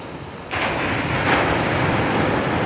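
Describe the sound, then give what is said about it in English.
Ocean waves wash onto a beach at sunrise on the morning of the last day of 2023, in a steady roar of surf that swells suddenly after a brief quieter moment, with a second surge building midway. No voices are heard. “Because there is nothing better than a sunrise over the ocean in the morning at the beach.”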